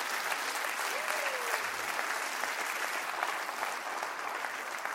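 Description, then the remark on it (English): An audience claps their hands in sustained, dense applause, a steady wash of overlapping claps at an even loudness throughout, with no voices standing out. “Clap your hands real big, real big, real big.”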